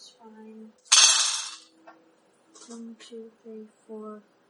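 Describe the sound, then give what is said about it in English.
A single burst of dice being gathered and rattled, clattering together, bright and fairly loud for about half a second, fading quickly, with people talking quietly before and after. “She's gathering her dice.”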